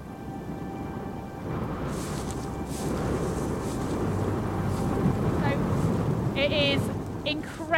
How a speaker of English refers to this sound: Incredibly windy at the moment.